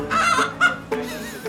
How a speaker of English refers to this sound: Molly, meet Texas Red, my soon-to-be state fair prize-winning poultry. That's a chicken? It's really big. It looks more like a dino chicken. He's a breed called Rhode Island Red.